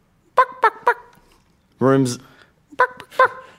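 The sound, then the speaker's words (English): A voice imitates chicken clucking: three quick bursts, then a longer drawn-out squawk, then a couple more short clucks, loud with no other talk. “You're talking like a chicken.”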